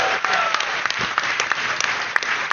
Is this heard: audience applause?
yes